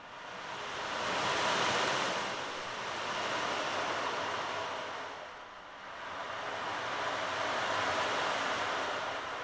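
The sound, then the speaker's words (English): A steady hissing wash like ocean surf, made by an ocean drum, swelling and fading in two slow surges, fairly soft, with no voices over it. “Sounds like the ocean.”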